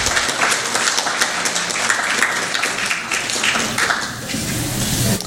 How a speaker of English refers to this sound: Again, give her a nice round of applause. She's wonderful.